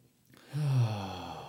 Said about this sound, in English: I feel a yawn, which usually means the release and the completion of a sadness wave.